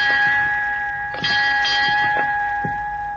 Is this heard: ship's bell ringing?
yes